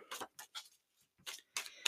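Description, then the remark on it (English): A deck of animal totem cards being shuffled: about five short, crisp papery bursts with brief pauses between them, moderately loud, with no voices. “Okay, so as I say, really good shuffle for these animal totem cards.”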